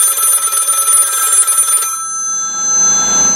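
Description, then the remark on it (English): An old-style telephone bell rings loudly with a rapid metallic trill for about two seconds, then stops and its tone hangs briefly as it fades. No one speaks. “And now, a very special, podcast-only, exclusive phone call, just for you, our faithful podcast listener.”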